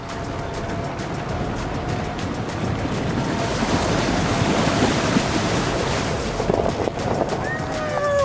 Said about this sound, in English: puts his truck in four-wheel drive for extra traction, and then he hits the gas hard until we get through the slush.